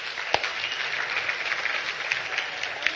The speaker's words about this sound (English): Let's give David a round of applause for last week.